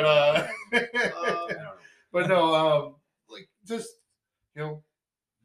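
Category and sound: human body sound, person coughing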